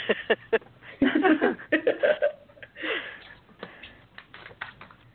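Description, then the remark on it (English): Soft rustling and shuffling movements of several people, with scattered clicks and taps, muffled voices and a brief laugh mixed in at moderate loudness. “Okay, so you hear all of us shuffling in the background,”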